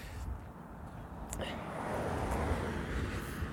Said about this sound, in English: Now I'm crossing a field and there's a car coming, so.